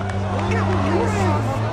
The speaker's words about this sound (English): People in black suits and funny face masks are walking the streets, holding big signs. They say, "Project Scientology. Ask me why I'm wearing a mask." And knowledge is free. crowd in front of the Scientology Center is growing, bigger and bigger.